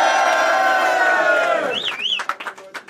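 A crowd roars and cheers loudly for over a second, then the noise breaks up into scattered whoops, a rising-falling whistle and claps as the cheering tapers off.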